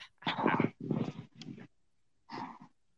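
A dog makes a series of loud, rough, growling vocalizations: three quick bursts back to back, a short pause, then one more, with no talking.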